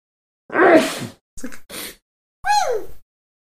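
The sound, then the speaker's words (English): A person vocally imitates the odd sneeze of a woman from work: a breathy burst, two short choppy huffs, then a high squeaky sliding cry, fairly loud with brief pauses between. “There's a lady at work who sneezes in a way that I didn't realize it was a sneeze.”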